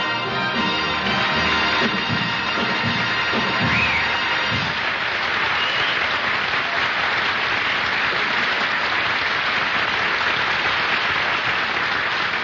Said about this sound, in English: I could even hear the applause.